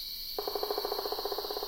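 A pileated woodpecker's drumroll: a rapid, even burst of resonant knocks, about fourteen per second, beginning abruptly and holding steady against a faint, constant high insect hum.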